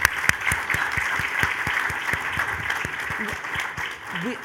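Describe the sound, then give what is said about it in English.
A crowd applauds steadily for comedian Bassem, a dense wash of clapping with sharp individual claps standing out in a fast irregular rhythm, fairly loud throughout, with a faint voice rising near the end. “So round of applause for Bassem.”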